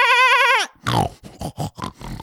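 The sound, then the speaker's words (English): A person wearing a pig face mask imitates a pig, starting with a high, wavering squeal and then breaking into a quick series of rough, snorting grunts, loud and with no other talk. “That was a really good pig.”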